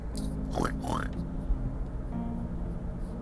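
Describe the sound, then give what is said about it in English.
A person imitates a pig with two quick, nasal oinking sounds in a row, fairly loud, followed by a quieter stretch of low background hum. “I feel just blah, like a stuck pig. Oink, oink.”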